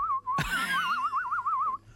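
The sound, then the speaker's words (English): A person whistles, holding a steady note, then a brief clatter as a phone is thrown down, then a wavering, trilling whistle that rises slightly and ends abruptly after about a second and a half. “And then you whistled.”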